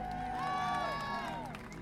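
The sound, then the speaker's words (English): A crowd clapping for carers on a Thursday claps together in a steady, dense patter, with scattered cheers and gliding, whistle-like tones rising and falling over the applause. “Thursday, clap.”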